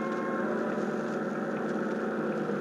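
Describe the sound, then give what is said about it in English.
A steady, loud drone of boat engines running at an even pace at night as the boats head for a beach with their running lights off, with a low harmonic hum and broad churning noise. No one speaks and the sound stays constant throughout. “At last, darkness fell and we turned over our engines and started to the beach, our running lights extinguished.”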